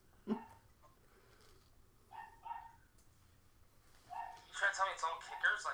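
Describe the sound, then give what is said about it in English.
A dog barks in short bursts: a single sharp bark, a pair a couple of seconds later, then a quicker run of excited yips and barks that grows louder toward the end. “Dogs off and running early.”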